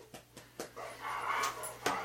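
A dog makes restless noises, a few short sharp sounds followed by a sustained whiny, breathy vocalizing, moderately loud with no talking.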